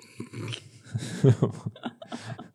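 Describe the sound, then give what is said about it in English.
A dog named Bowser lets out a short run of gruff, low barks and huffs in response to someone at the door, loudest in the middle of an irregular burst, with no one talking. “Once Bowser's finished responding to the door.”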